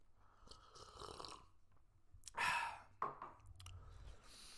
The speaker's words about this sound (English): Anyway, coffee sip.